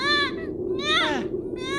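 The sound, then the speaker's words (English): A baby screeches in three loud, shrill wailing bursts, each cry wavering up and down in pitch and separated by brief gaps, over a low steady rumble. “You and that screeching little...”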